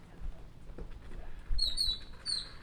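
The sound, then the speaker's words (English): A mockingbird gives a few quick, high-pitched chirping notes in the second half, the short whistled phrases repeating over a faint low rumble and soft patter, with no one talking. “You're excited thinking that you're going to see a bird, and then you see a mockingbird.”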